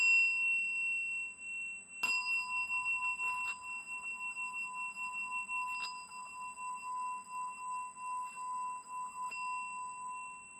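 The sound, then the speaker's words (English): A singing bowl is struck and left to ring, a steady shimmering hum with bright overtones; fainter taps add a few brief accents as the long tone sustains throughout. “I'll hit you with this singing bowl again.”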